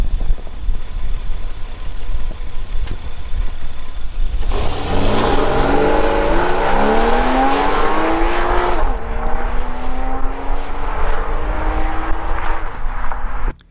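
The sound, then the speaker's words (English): A car with its stock exhaust idles on the roadside, then revs hard with rising harmonic sweeps before accelerating away from the camera and microphone through the gears, the roar climbing in pitch, loud at first with no talking. “So let's take it outside and let's listen to the stock exhaust first revving on the roadside and then accelerating away from the camera and the microphone.”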